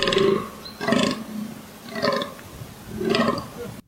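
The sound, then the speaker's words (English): A fallow deer buck's deep, belching rutting groans, four of them in a steady rhythm about a second apart, loud with a guttural, burp-like rasp. “That's a fallow deer. Is that what that is? Oh, they have a weird noise.”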